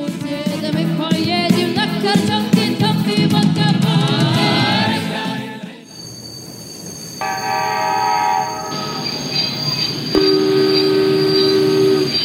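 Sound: train arriving at station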